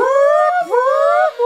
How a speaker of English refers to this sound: Hit the alarm!